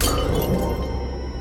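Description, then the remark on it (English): A glass bottle of elixir thrown at a mirror smashes, a sharp bright burst of shattering at the start followed by fragments tinkling and settling over the next second, loud, with no voices. “Frustrated, he threw the bottle at the mirror.”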